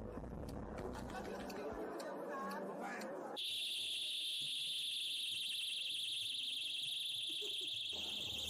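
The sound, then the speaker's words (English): Alarms on balloons launched at a meeting in a banquet hall let out a piercing, steady high-pitched shriek that starts abruptly and drones on continuously. It follows a stretch of busy crowd chatter, with faint murmuring still underneath. “And these undercover journalists, pretending to be eco-activists, launched balloons with alarms on them.”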